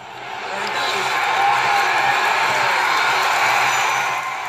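A crowd cheers and applauds in a steady, dense roar that swells in over the first second and holds loud and unbroken before easing off at the very end.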